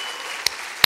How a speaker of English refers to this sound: This Wednesday night, right here, 6/5/2019, I celebrate the coming of the Holy Spirit on the church. Come on, clap your hands.